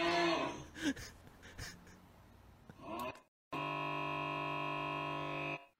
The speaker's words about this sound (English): And then that fucking cow started and you're laughing. Wait. Oh. Do you know the original video of that? No. It's not a cow. That's a guy snoring, bro. That's a guy snoring. That's why it's funny.